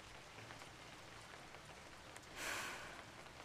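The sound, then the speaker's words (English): Steady rain falls with a soft, continuous hiss, scattered drops pattering on a surface, swelling briefly louder before settling back to an even wash. No voices. “Oh, shit, raining again.”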